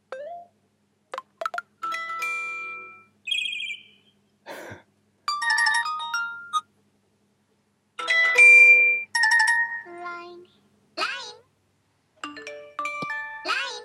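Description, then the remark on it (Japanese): An iPhone ringtone melody plays in short bursts of bright marimba tones, repeating phrase after phrase with brief gaps, clear with no one talking. “なんかそう、 iPhone の曲、 うん、 着信音あるじゃん。”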